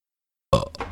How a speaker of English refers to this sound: Let me just burp into the mic here. That's good podcasting, right? Nice burp for the people.